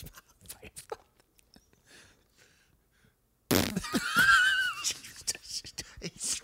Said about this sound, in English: Fart in his mouth. Yeah, fart.